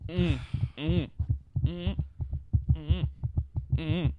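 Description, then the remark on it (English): Loud thumps on a microphone, made by a person messing with the mic, repeat in a steady heartbeat-like rhythm, with tonal vocal-like sounds rising and falling between them. “It sounds like a heartbeat.”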